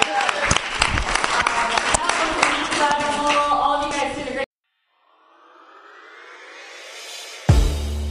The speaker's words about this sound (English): Well, let's give it a really warm round of applause for all the people out there.